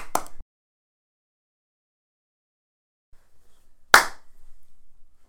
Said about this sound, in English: Okay. Do you want to do another clap?